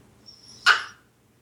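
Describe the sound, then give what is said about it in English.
A single short, sharp bark from the speaker's dog, fairly loud, rising out of quiet background hum, with a faint high whine just before it. “Sorry, my dog has let his needs be known.”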